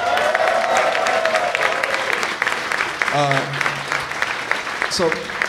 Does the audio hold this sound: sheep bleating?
no